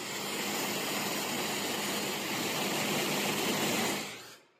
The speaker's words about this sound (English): Should I play a little bit of it? The industrial fan noise.